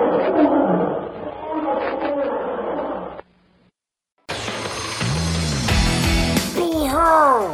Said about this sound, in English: As he again turns to face Toldo, the great beast hurls himself forward with a thunderous roar.